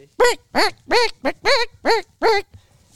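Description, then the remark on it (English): Seven loud, honking rubber-chicken squawks come in a quick, steady rhythm, each a shrill, nasal wail about a third of a second apart, with no talking underneath. “There's a chicken in the room, guys.”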